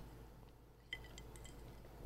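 Two glasses touch in a toast, a single bright clink that rings briefly, followed by a few faint lighter taps, with no talking.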